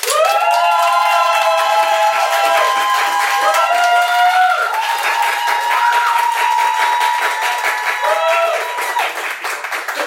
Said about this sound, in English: Anyway, so for those of you who believe Erica is the victor, please clap now.